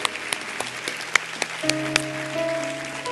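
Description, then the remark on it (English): An audience at Christian Life claps their hands in praise to the Lord, a lively, steady burst of applause with sharp individual claps standing out, while sustained low keyboard chords swell up underneath and no one speaks. “Let's give the Lord one more hand clap of praise tonight.”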